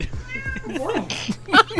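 A cat meows, a drawn-out wavering call followed by a couple of short, sharp meows in quick succession near the end.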